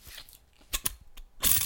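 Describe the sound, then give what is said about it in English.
A screw cap is twisted off a Lambrini bottle: a couple of sharp crackling clicks, then a longer gritty rasp as the seal gives way, with no one talking. “Yeah, we're getting pissed on Lambrini, which I'm going to... If you hear this noise, it's a little...”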